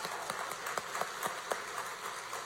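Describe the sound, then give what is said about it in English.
A crowd applauds the tech team during a service, a steady wash of clapping with a few sharper individual claps standing out, at moderate volume, with no one speaking. “So if you guys would just help join me in giving that tech team a round of applause.”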